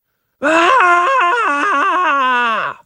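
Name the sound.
imitated woman screaming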